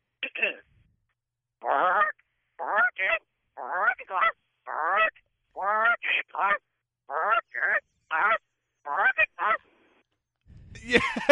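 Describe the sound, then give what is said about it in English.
A man's voice imitates a goose, honking in a long series of short, nasal calls with brief pauses between them, clear, ending with a burst of noise. “Can you say working class with the goose sound and then working class bow hunter?”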